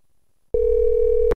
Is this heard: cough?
no